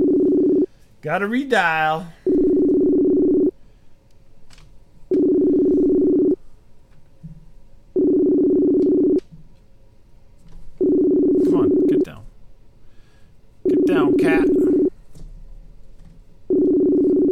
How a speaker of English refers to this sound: Oop, I think I lost him here. Let's see if he gets cut off now or comes back. He got all worked up there and kitty. We'll see. Yep. Gotta redial.